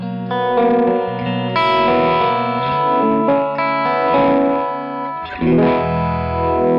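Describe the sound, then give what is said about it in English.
Electric guitar played through a Univibe pedal, sustained overdriven chords and notes carrying a gentle swirling, pulsing modulation, steady and fairly loud with no voices. “I think it's such a nice effect, Univibes in general.”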